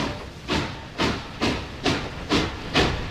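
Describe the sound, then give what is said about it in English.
A steam locomotive chugs, its hissing chuffs arriving in a steady rhythm of about two per second, with roughly seven bursts over a constant rumbling background and no voices. “You can do that with a train building.”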